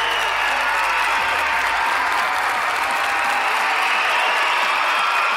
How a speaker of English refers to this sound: It's good for the ego, all of that recorded clapping. I know. What are you saying? They're real. Maybe not.